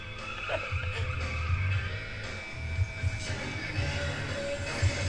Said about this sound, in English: What's the deal with people crashing into everybody here? There's no brakes in the cars, remember?